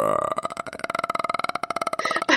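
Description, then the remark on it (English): A voice mimics a rumbling stomach growl, a rapid gurgling string of pulses lasting a couple of seconds and ending with a short breathy rasp. “That was an amazing stomach growl noise.”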